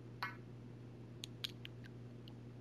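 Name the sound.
pen writing on paper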